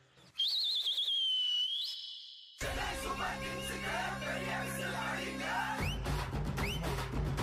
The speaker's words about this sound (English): Whistle for it! Start the whistles.